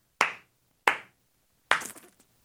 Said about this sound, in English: Yeah, no, just say it and then clap for yourself.